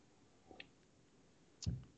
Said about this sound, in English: I can still hear you shuffling around with your potato chips or whatever it is that you're eating. They are Wheat Thins for the 90th time.